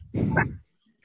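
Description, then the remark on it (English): A dog gives a single short, low growl, a rough rumbling burst lasting about half a second, loud, at something it thinks it sees outside, followed by near silence. “Sorry, I'm just listening to your dog growl and your kid play with toys and bringing up my Letterboxd account.”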